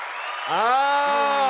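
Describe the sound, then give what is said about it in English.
A burst of canned applause played from a soundboard button, a steady wash of clapping noise, joined halfway through by a loud rising cheer of voices that holds to the end. “Applause. There we go.”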